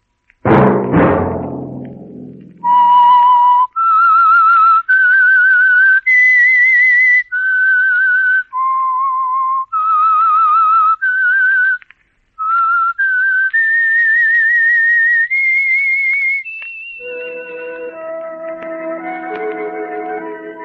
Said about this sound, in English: Let That Whistle be your invitation to the Household Finance Corporation program, The Whistler, each week over these stations.